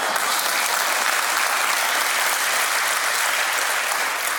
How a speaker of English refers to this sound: We should clap for that.